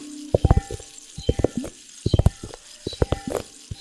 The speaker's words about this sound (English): Liquid globes.